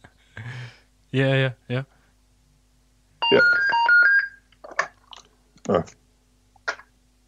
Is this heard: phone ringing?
yes